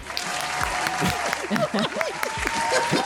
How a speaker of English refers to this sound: What is that? The applause was delayed.